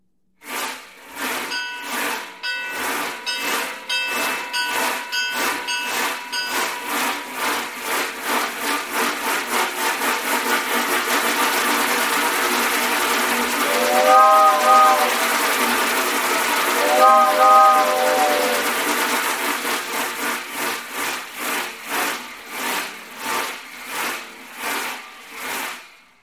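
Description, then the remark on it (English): A hand-worked sound-effect device from a collection of silent-film sound effects mimics a passing train: scraping chugs speed up into a steady rush, two whistle-like toots sound midway, then the chugging slows and stops. No voices. “But I'll give you an example of a train going by.”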